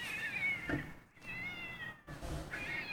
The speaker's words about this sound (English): And you, it is a cat fight. Bro, these cats are going at it.